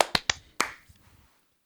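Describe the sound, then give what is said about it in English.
A few sharp hand claps made to sync audio after a countdown, in quick, uneven succession, three close together and then one more, each a crisp bright slap that dies away fast, with no voices. “Clap sync. 3, 2, 1.”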